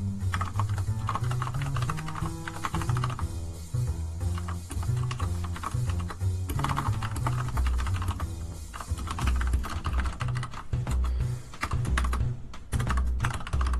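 Rapid, continuous typing on a computer keyboard while writing a tweet, fairly loud, with dense clattering keystrokes for about fourteen seconds and a low hum running underneath.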